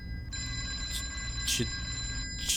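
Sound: telephone ringing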